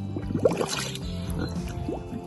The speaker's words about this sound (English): My favorite recording is this one, of a pig blowing bubbles into a puddle of water.